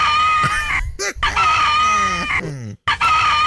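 A rooster crows loudly, its harsh, drawn-out calls rising and falling, with a couple of brief breaks and a sharp clucking squawk near the end. No one speaks.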